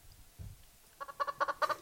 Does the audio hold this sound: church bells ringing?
no